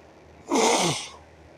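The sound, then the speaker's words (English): A single forceful nose blow, a harsh, airy honk lasting about half a second with a rough, sputtering texture, heard alone with no talking. “I was blowing my nose.”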